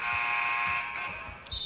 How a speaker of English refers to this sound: Now they have a stoppage and a buzzer sounding across the way. And something with the controller for the clock.